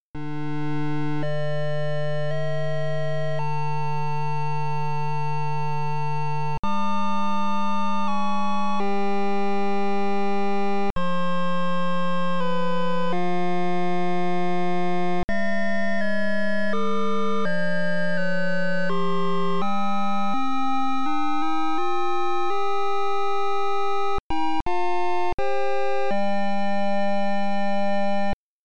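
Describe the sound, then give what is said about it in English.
A simple electronic game-music track of bright, pure synthesized tones, holding steady notes that step between pitches in a slow melody, with a few quick chirping runs; loud and alone, no voices. “yeah, because the music is just really simplistic. It's these really simple tones, and we'll give it a listen.”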